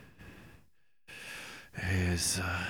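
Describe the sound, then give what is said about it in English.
Heavy breathing right against the microphone, which a man holds up to his throat, done as ASMR: two breathy rushes separated by a brief silence, the second swelling into a loud, voiced sigh-like exhale. “And I'm here just with my some ASMR with my breathing, and I.”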